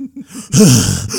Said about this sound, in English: But anyways, post-game. Yeah, post-game. David Fizdale. Starts it off with a pretty interesting tone by breathing heavily into the mic.